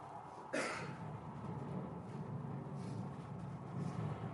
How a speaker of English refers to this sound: You can hear the reaction to the tear gas.